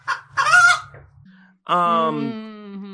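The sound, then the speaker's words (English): A few sharp, scratchy chicken clucks come first, then after a short pause a rooster lets out a long, loud crow that trails off, with no talking. “So she's been very popular, especially with the cocks and hens.”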